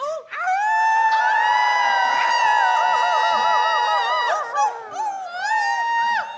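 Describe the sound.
An audience howling like wolves instead of clapping, many overlapping voices rising and wavering in long sustained howls for several seconds, loud, then a second swell of howls near the end.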